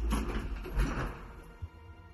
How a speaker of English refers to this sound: They pushed me away just as the elevator doors shut.